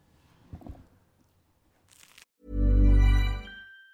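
A bite into crisp food makes a brief crunch, followed by a loud, low, resonant burst. Soft mouth sounds come before it, and no one speaks.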